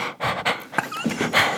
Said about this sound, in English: Hear me breathing?